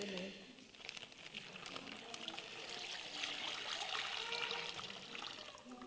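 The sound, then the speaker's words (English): A steady trickle of water runs continuously into a bag for several seconds, moderately quiet, with a faint voice murmuring underneath. “It's just got a little bit of water in it.”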